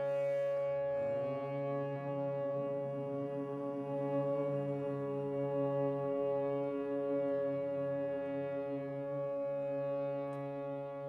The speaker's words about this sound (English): Take a nice deep breath in and then humming this note, breath in.